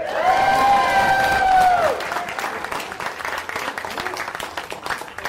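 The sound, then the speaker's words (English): An audience cheers on cue after chanting "DuckTales? Woohoo!", loudly, with sustained high whooping voices over a roaring crowd for about two seconds, then dense clapping and cheering continue at a slightly lower level. “So let's do it three times and then cheer as loud as you can, all right?”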